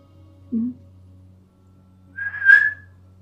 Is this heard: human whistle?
yes